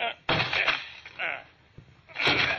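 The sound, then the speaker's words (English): Three heavy, booming thuds strike a door about a second apart, each crash followed by a short rattling rumble, loud, as people break down the door. “Let's break down the door.”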